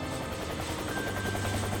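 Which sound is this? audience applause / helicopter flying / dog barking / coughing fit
helicopter flying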